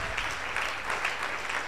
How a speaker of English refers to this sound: It's another good place to clap your hands together for Jesus.